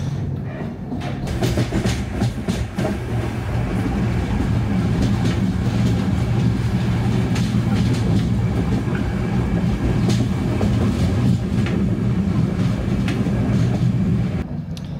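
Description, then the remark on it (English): A steady, loud rumble of a moving train on a single-track railway heard from onboard in rain and mist, with continuous low-frequency roar, rattling carriages and faint rhythmic clatter of wheels on track, no talking. “Yeah, it's funny how many holes there are that you could film out of the train.”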